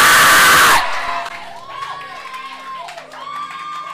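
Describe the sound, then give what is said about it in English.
An audience erupts in loud shouting and clapping for under a second, then the crowd noise cuts off and a single amplified voice speaks in a reverberant hall. “Those who are shouting and clapping, receive it.”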